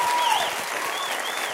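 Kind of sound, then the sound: crowd, audience round of applause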